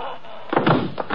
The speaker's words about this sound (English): Shut the door, Louis.